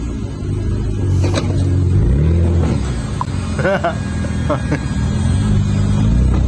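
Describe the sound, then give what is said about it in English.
A car engine revs loudly, its low rumble rising in pitch as the vehicle pulls away, nearly hitting the person shouting over the noise. “You need to get out of the vehicle.”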